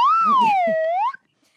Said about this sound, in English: Get out the slide whistle.